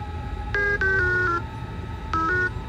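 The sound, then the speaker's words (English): A short run of electronic beep tones given as answers in a one-tone-for-yes, two-tones-for-no code: several bright, steady pitched beeps of differing notes in quick succession, a pause, then two more beeps, over a low background hum with no talking. “Let's try one tone for yes, two tones for no. Okay, that's more than two, but...”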